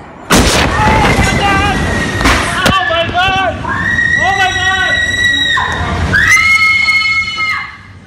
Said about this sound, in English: Videos of that insane explosion in Beirut.